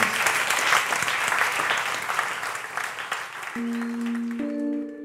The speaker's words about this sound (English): And please give her a round of applause.